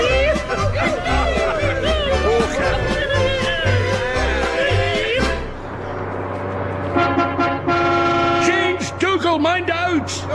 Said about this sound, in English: Bus is taking a corner. Far too fast. He's heading straight for Moira Anderson's world of kippers. No! He's swerving off towards the Highland Bap and Oatcake experience.